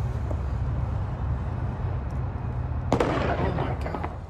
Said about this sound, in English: Sounded like one gunshot to me. That's what it sounded like, but they're saying exchanged gunfire.